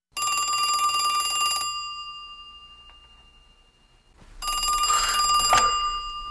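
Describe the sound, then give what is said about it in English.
An old-fashioned telephone bell rings twice, two long loud jangling bursts separated by a few seconds of quiet, with no voices. “Beware of a late-night phone call.”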